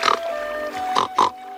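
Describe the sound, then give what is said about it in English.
A pig grunts and oinks in three short, squealy bursts as the character Pigsy turns into a real pig, one at the start and two close together near the end, loud over a steady faint background hum. “Whenever Pigsy has rude thoughts, he will turn into the real pig.”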